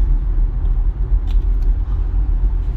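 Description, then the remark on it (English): Steady low rumble of a car in traffic, a continuous loud road drone filling the low end, with a few faint higher clicks or squeaks briefly poking through midway. “I'm still in traffic. No one's hit me again yet.”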